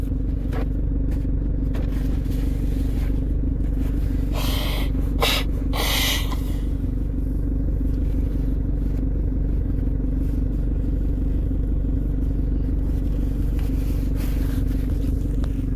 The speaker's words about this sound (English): Nose break means I'm blowing my nose because in the morning your head, you're detoxing and your head's congested.